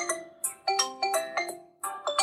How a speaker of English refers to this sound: Oh, my phone's ringing. Who's that?